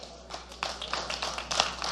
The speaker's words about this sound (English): Ooh, listen to them thin hand claps, boy. It just sounded like a little bitty church.